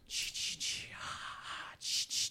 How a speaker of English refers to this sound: I don't think heavily breathing on the microphone is helping anything.